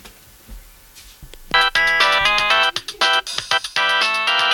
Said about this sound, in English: Can you go get your blue phone and make it sound like it's ringing?